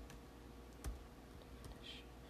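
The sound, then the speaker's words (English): Soft computer keyboard typing while searching Google for a definition: a handful of scattered, quiet key clicks at an uneven pace against a low background hum, with no one speaking. “You guys can listen to my typing.”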